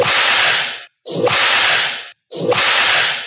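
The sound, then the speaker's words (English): Three loud whip cracks in a row, each a sharp snap followed by a brief whooshing tail, separated by short silences. No voices are present. “We don't want to have to go out and buy a new whip.”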